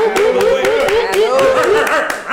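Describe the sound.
A quick burst of hand claps from show hosts welcoming back a returning guest, roughly ten sharp irregular slaps over a couple of seconds, mixed with excited voices whooping and laughing over them.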